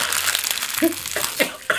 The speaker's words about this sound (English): All right, I'm just crunching the Rios bag in front of the mic.